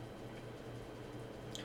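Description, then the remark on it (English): A single soft drip of water near the end, faint over a steady low hum from an office water cooler, with no voices. “Bro, it's a straight up water cooler. It's a water cooler.”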